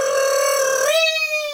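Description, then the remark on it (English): A voice mimics a ringing telephone with a single sustained, buzzy tone that steps up in pitch halfway through, fairly loud with no other sounds around it. “Okay, so we're going to do a phone call ringing. Can you make the sound effect, please?”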